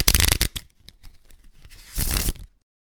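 A deck of playing cards is shuffled: a loud crackling riffle, a few light taps and flicks, then a second brisk riffle before the sound cuts off.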